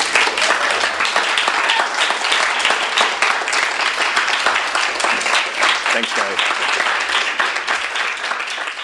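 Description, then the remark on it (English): Sustained audience applause for the speakers at a Skylight Books author reading, a dense, steady wash of many hands clapping at an even loudness for about nine seconds without pause. “But first, let's give them up.”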